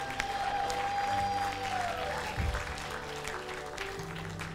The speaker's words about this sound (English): No one is too far off. Can we give Jesus a round of applause? We can have a praise break for a moment.